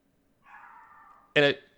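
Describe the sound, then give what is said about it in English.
A dog whines in a thin, drawn-out tone, then lets out a single loud, sharp bark, with no talking around it. “I don't know if you heard my dog.”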